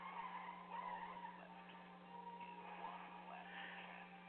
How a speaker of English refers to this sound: And that whole scene right there, the final truck chasing battle, Jesus.